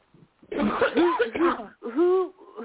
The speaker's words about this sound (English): Who's coughing? Not me. It's me.